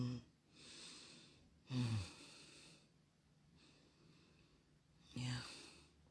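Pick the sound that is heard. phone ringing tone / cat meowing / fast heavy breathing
fast heavy breathing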